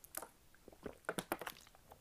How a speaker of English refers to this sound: Let me also take a drink of water.